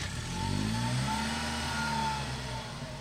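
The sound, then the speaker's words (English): A Morgan sports car engine revs, its deep, throaty drone rising and easing back over a few seconds, loud and steady with no voices, at a Morgan Sports Car Club event at the Wings Museum in Sussex. “What the event was today was lots of Morgan cars arrived, and it made us all smile.”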